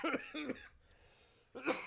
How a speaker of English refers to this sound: Man, I just recently quit smoking cigarettes, and that shit's got me... got my lungs coughing up so much crap.